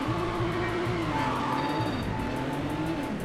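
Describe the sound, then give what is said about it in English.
A racing video game car engine drones steadily at high revs, its pitch wavering up and down, with tires skidding and squealing over the top in a continuous, loud rush with no voices. “We'll stick with the same car.”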